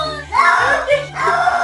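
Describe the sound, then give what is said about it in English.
A male cat that does not want to take a bath yowls in drawn-out, rising and falling wails that sound almost like a voice shouting "no," two or three loud, strained cries in quick succession with a steady low hum underneath. “He's screaming the word no because he doesn't want to take a bath.”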